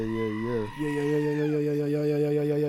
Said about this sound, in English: How do you know what a screaming goat sounds like? They sound like humans. You never, that did sound like a man.